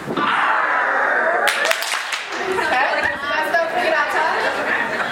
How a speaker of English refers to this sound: So, close one eye. Arm goes down. We'll do it on three. Arm goes down. Stomp your foot. Clap up. We'll try it on three.